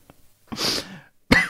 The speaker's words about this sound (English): Ooh, excuse me. Edit that cough out.